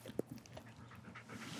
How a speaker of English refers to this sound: Oh, yeah. Get that dog breathing.